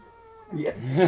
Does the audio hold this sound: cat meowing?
yes